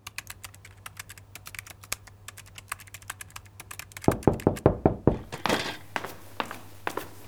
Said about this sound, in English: you don't have to knock. You do live here.